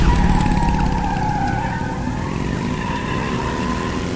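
Roaring engines and screeching tires as Gordon rides a motorbike chasing a car through the streets, the skid squeal wavering loudly and continuously, with no voices.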